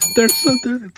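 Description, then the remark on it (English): A streetcar bell rings, its bright, steady tones holding for about a second while a voice makes several short voiced sounds over it. “Here it comes. Wave to the streetcar.”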